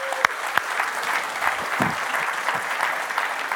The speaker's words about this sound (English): Our staff has been here all day. This is our third out of four services. Please give them a round of applause for being so amazing.